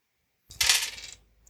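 Five dice, rolled for a steel-push roll in a game, clatter and rattle across a hard surface in one short burst after a moment of silence, then settle quickly.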